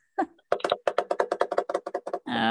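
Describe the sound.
A quick, steady run of sharp tapping hits, pens drummed as a drum roll, about a dozen taps, ending in a brief sustained vocal sound.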